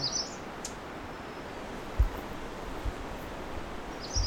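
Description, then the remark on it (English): A few sharp, high ovenbird alarm ticks, aimed at the recordist, sound at irregular intervals over steady outdoor hiss, fairly faint, with a couple of soft low bumps in between. “So I have an oven bird ticking at me.”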